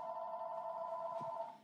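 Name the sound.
telephone ringing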